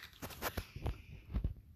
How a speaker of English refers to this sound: I'm sorry for chewing ice. My bad, guys.